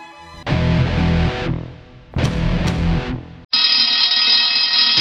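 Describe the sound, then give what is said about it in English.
A loud fire alarm blares in harsh, buzzing pulses, two long blasts with a short gap, then shifts into a steady, piercing high-pitched ring that continues to the end. No voices. “Easy, the fire alarm.”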